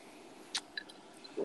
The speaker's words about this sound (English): Ah. Man, do you hear yourself gulp when you listen back to the podcast?